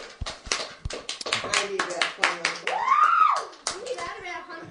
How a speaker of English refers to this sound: All right, thank you for that honesty. Give him a big clap for being honest.